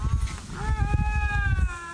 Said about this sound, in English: This is two lynx, everybody screaming at each other. It's terrifying.